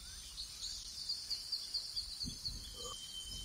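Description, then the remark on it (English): A quiet, steady stream of high, rapid bird chirps repeats over a soft jungle-like hiss, with a few lower calls near the end; no one speaks. “birds singing”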